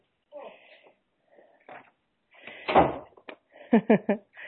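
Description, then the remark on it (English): A door in a family home in New Jersey is pushed shut by a young nephew with a solid thud, followed by a few quick knocks and rattles as it settles. Soft, indistinct voices murmur beforehand. “will you shut that door for me?”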